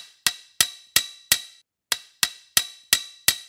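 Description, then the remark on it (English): A donkey hammers with its hoof at an old sign on a fence post next to a farm's front gate: eight sharp ringing strikes in two quick bursts of four with a short pause between, loud with a bright metallic clang and no voices. “nails puckered into the corner of his mouth, furiously hammering with his hoof at what appears to be an old sign on a fence post next to the entrance.”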